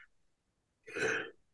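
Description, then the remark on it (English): A single breathy sneeze from a person in an attic bursts out of near silence, lasting under half a second, followed by a brief sharp noise right at the end. “Oh, wait, I might have to sneeze.”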